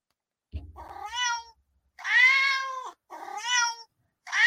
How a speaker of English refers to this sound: All right, gotta love that. There's the cats. Okay, yep. Yep, those are the cats. Yep, those are the cats.